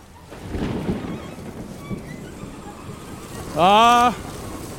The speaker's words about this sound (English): And here it is. Here is that rain.